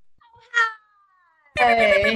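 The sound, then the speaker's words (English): A voice imitates a cat meowing: a short, bright meow that trails into a long, thin gliding tone. It is followed by a louder, buzzy, rapid burst of vocal sound. “I know, I always feel like I need something like meow, meow, meow, meow.”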